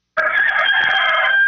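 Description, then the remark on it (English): A rooster crows loudly, a single sustained cock-a-doodle-doo that starts abruptly and holds a strained, harmonic tone for over a second with no talking. “Now that's a rooster.”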